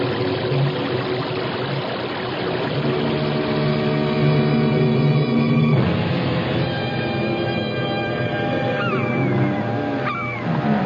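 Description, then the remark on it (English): A loud, steady roar of churning, rushing water from a whirlpool fills the whole stretch without a break, with tonal music swelling over it partway through. “what's that noise? It sounds like a giant waterfall. There are no falls around here. It's a whirlpool.”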